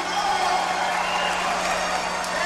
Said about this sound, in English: Now, here's something you don't see or hear. At New York's Grand Central Station very often, a group of Iranians handing a Persian rug as a gift to a group of Americans, and a crowd applauding the move.